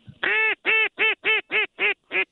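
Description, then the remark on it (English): Waterfowl coming in from offshore give a series of seven loud, nasal, goose-like honks, evenly spaced in a steady rhythm, clear with no talking over them. “Got some coming from offshore here, too.”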